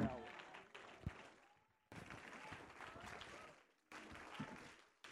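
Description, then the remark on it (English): A church audience standing and clapping their hands together in praise to God and to welcome a preacher, in loud, dense bursts, broken by two brief drops into near silence, with voices calling out mixed into the applause. “Let's stand and clap our hands together and give praise verbally unto God.”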